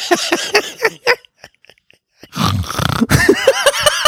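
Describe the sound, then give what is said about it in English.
A person imitates snoring with their voice: a few short vocal bursts, a brief pause, then a longer, loud, raspy snort-like drone. “I'm sorry, but I was snoring with my eyes wide open.”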